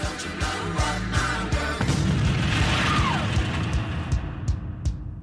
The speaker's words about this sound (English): Yep, and it ends on a very on the nose explosion sound.